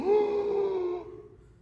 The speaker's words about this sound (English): A second collective gasp. Can you do it? Go, do that.